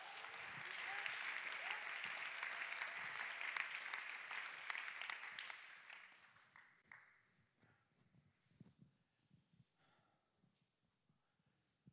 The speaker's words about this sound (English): Come on, one more time, let's clap our hands and give him praise.